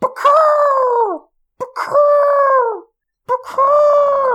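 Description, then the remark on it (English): A person's voice imitates a bird call with three loud, drawn-out cries, each starting with a sharp attack, holding a steady tone for about a second, then sliding downward, separated by short pauses. “I'll shut up so you can do the bird call.”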